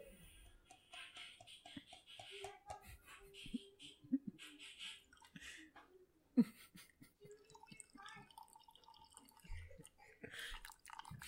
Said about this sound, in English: You hear me pouring in the coffee? It's an ASMR episode again.